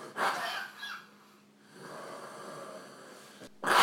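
A sharp sneeze bursts out, followed by breathy snorting and sniffling, with another abrupt nasal blast at the end. No one speaks.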